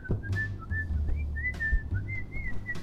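A man whistles a bouncy, cheerful tune as he rounds a corner and walks down a hallway past a technician, the notes gliding up and down in quick phrases over a low hum, clear.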